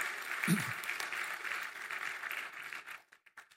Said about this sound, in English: Let's take a moment and applaud our moms here today for the sacrifices they make.